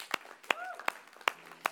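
Audience clapping in slow, steady unison: five sharp, evenly spaced claps at a fairly quiet level, with a brief faint vocal tone between the second and third.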